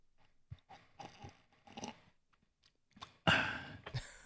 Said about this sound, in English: Let's see if I can get me, like, sipping the fucking bourbon.